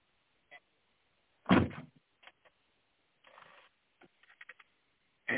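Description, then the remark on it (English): A car's rear hatch being opened to take things out: a solid thump and latch clunk, then light clicks, a short rustling shuffle, a few more taps, and a final dull knock. “Go open up the back of the car, okay. Where it's easier to take everything out.”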